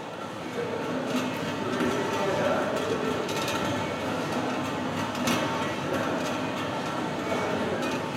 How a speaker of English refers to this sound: Reminds me of the rumble you get when you're waiting for a train in a subway or something. There's sort of that sound that starts coming down the tracks and sound that starts coming down the tube.